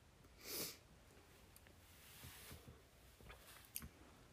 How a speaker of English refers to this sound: I was trying to do a very thorough sniff and swirl.